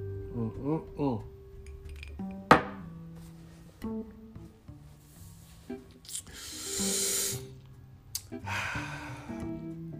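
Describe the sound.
A drink of Bamboo XO rum and Minute Maid juice being mixed: a sharp clink of a glass, then two short bursts of liquid pouring and splashing, with voices murmuring around it.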